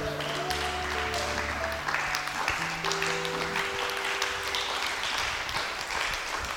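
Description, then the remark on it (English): An audience at a church service claps for the Lord steadily for several seconds, a dense, sustained wash of many hands, while sustained organ or keyboard chords sound underneath. “May we assume our seats in the name of Jesus and give the Lord a mighty clap.”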